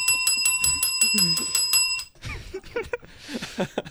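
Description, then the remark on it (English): A bicycle bell rings loud in a rapid run of about nine bright dings over two seconds, its tone hanging in the air as a person starts talking. “Did you not hear me ringing the bell?”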